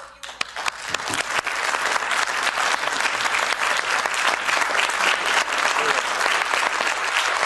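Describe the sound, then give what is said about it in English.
Sustained, dense applause from a large crowd in the EU Parliament, a standing ovation for a speaker, steady and loud throughout, with many hands clapping at once in a continuous roar. “Well, they're clapping. They gave him a standing ovation.”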